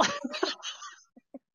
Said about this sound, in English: I was trying not to cough.